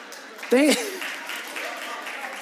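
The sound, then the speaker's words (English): An audience breaks into scattered, moderately loud clapping that continues steadily after a brief voiced exclamation, the applause diffuse and spread across the room. “And just to make your pastor feel better, if you disagree with him, you just clap.”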